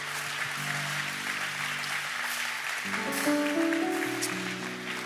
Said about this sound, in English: all right, let's all clap. Come on.